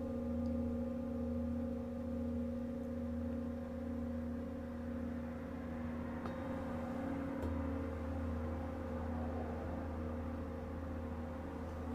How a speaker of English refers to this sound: So she's moved one of the sound bowls down right on top of the shin, and the other one is still on the chest, kind of hitting them back and forth.